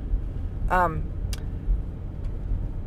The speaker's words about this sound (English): I don't know what this truck is doing. I guess he's going sideways.